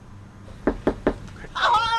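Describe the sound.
Three firm, evenly spaced knocks on a front door in Orland Park during political campaign door-knocking, distinct, followed right after by someone's voice starting up as the door is answered.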